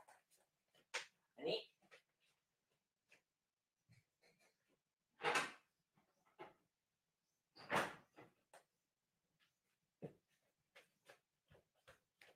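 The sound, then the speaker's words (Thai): A door is opened to let a pet named Tom out, with a couple of louder clunks and rattles amid scattered softer knocks and shuffling, plus occasional quiet vocal sounds. “ครับผมขออภัยนะครับต้มมัดมาเรียกร้องให้เปิดประตูนะฮะไม่งั้นเราจะได้ยินเสียงต้มอยู่ตลอดเวลาทั้งคลิปนะครับ”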